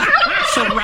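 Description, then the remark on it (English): Around a dozen turkeys gobbling at the John Muir Clinic on Grant Street in Concord, in the East Bay, in a loud, rapid burst of warbling, wavering calls, several voices overlapping in a dense chatter with no talking. “Like other locations in the East Bay, the John Muir Clinic on Grant Street in Concord has seen around a dozen turkeys, aggressive”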